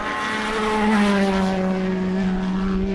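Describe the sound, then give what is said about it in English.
Race cars at Le Mans at night roar past about 40 feet away at the apex of the last turn, a loud, sustained engine howl with strong harmonic whine whose pitch slides gradually downward over three seconds. No one speaks. “I'm standing perhaps no more than 40 foot away from the cars, just on the apex of the last turn.”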